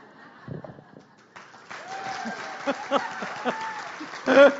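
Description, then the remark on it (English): A crowd breaks into applause after a brief low murmur, a dense wash of clapping that holds steady and swells near the end, with voices mingling underneath. “I mean, I'm a third child. I love the applause.”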